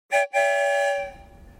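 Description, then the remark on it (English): A train whistle sounds once, loud, with a brief hitch just after it starts, then holds a steady, bright chord for under a second before fading out; one whistle signals yes to a question. No one speaks. “sometimes we can even ask the story train questions. One whistle for yes. Two whistles for no.”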